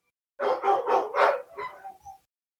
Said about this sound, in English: And I apologize for my dogs if you heard them in the background.